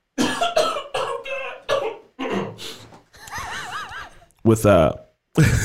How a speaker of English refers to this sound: I'm sorry, I'm going to cough. Give me a second.